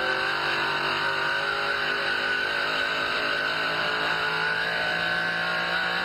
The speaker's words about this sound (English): Seven times, 7,100. Not so good. Down the flat straight. Motor seems to be a little lazy. It isn't revving up as fast.